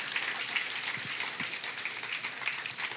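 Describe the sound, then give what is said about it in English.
A crowd at LifePoint Church applauds to show appreciation for volunteers who serve its students, a dense crackling wash of many hands clapping at once that holds an even loudness throughout, with no voices heard. “Would you put your hands together and let them know how much you appreciate them?”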